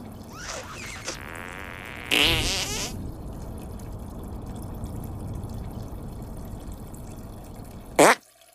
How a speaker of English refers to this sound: Hey, did you guys hear that? Sounded like a chipmunk. You know what's awesome about farts?